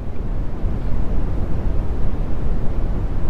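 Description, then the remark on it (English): Brown noise: a steady, dense rumble weighted toward deep low tones with only a soft hiss on top, holding an even loudness for the whole few seconds with no voices. “Oh, so this is brown noise.”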